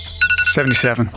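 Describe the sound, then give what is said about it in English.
An electronic quiz buzzer goes off, a short bright tone with a steady high pitch and warbling, ring-like bursts, while a voice briefly sounds underneath. “On the buzzer.”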